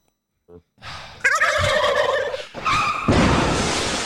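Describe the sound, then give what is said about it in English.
A turkey lets out a loud, rapid, warbling gobble in two bursts, preceded by a short faint rattle and ending in a harsh, noisy rush of sound. “I feel like if I cut out all the turkey crashes in each episode, these would be like 30-minute episodes.”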